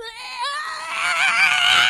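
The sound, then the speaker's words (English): A sustained, strained scream from an animated character, loud, its pitch wavering and rising into a harsh, bright peak across the full two seconds with no pause. “Yeah, he's screaming, and then there's a big explosion”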